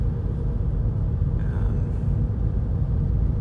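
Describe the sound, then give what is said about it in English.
A car drives along with a steady, loud low-frequency engine and road rumble filling the whole stretch, continuous, with a brief faint whine rising briefly midway and no voices. “Now it's, again, very tempting to go fast, but I'm not gonna do that.”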